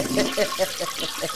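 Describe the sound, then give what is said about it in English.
A toilet flushing: a steady rush of water with rhythmic gurgling pulses, fairly loud and over in about a second and a half. “Flush it twice because it was a big bog on the weekend.”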